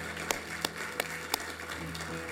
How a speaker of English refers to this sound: Can we give the Lord a hand clap, y'all? Come on, somebody.